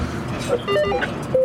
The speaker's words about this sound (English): We're in an armoured car pulling back from one of the forward positions. The roads are literally littered with debris, with cars. So we have to be very careful how we move because it's a perfect place for an ambush.